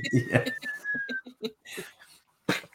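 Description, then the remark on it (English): A person whistles a thin, steady tone that slowly slides downward for about a second, mimicking the whistle of a falling bomb like a Stuka dive bomber, while other voices talk and laugh around it. “The whistle far outweighs the explosion.”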